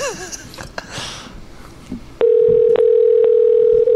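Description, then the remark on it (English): After a couple of seconds of muffled rustling, a loud, steady electronic phone ringing tone starts and holds unbroken to the end, with no answer. “Never picks up.”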